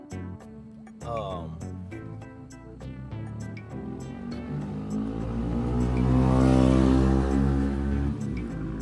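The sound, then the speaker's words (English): A motorcycle engine in Texas rumbles and revs with a deep, throaty drone, growing steadily louder and rougher through the middle before easing slightly at the end. “Seems like everybody has a bike or has a fucking chopper or some loud noise and shit.”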